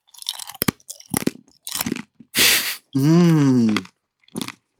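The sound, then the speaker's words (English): Loud crunching as a mouthful of crunchy trail mix is chewed in irregular bursts, with one sharp crackling bite and a brief hummed, appreciative murmur in the middle. “It looks like it's going to be crunchy.”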